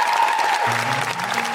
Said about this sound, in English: And if anybody feels the same way, I think give a massive round of applause to the Guilty Feminist.